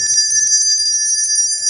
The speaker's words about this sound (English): What is that sound? That's a bell, right?